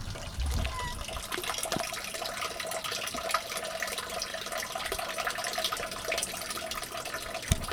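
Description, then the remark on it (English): Meltwater from snow runs steadily down a drain, a continuous splashing trickle with a bright, hissy texture and no voices, holding an even level for several seconds. “I soon hear the creaky for sale sign again and the snow melting down the drain.”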